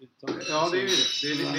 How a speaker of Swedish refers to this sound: Hörde ni glaset? Du drog dem ett gäng glas här utanför precis när du sa det.